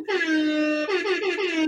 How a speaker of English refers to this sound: Hip hop air horns for this lady.